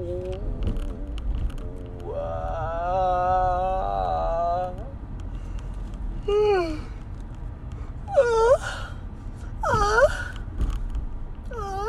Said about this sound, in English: That's a yawn. That's how I yawn. I'm so sleepy.